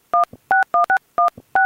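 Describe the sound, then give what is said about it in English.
Telephone keypad tones beep six times in quick, uneven succession while dialing a call to Nick, each a short two-pitched electronic bleep with faint clicks between presses, loud with no voices. “All right, let's call Nick now.”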